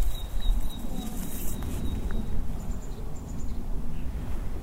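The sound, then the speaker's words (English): Faint, high bird chirps and a thin sustained twittering from birds in churchyard trees, attracted by a birdhouse, over steady low outdoor rumble, with a few brief calls toward the end. “That's what's attracting all these birds.”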